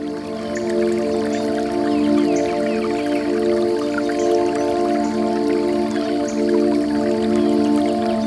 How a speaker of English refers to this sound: quaint river. Chuckling to itself as the water trickles downstream. You approach the river and find a moss-covered rock to sit on.